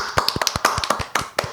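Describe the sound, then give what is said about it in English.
A handful of people clap briefly and unevenly, about a dozen sharp, scattered claps over a second and a half with no real rhythm, sounding thin and half-hearted. No one speaks. “That was the most sad clap I've ever heard in my life.”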